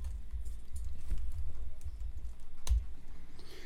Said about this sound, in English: Ooh, I hear some clicking back there. What's going on? What am I doing? No, I'm just typing down the name, so I'm trying not to repeat.